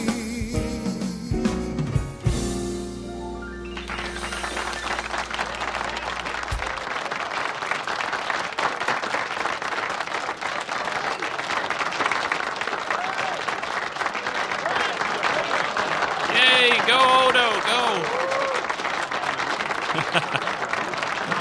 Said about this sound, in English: Having a good time there. Everyone's applauding. And yeah, it was a good scene there.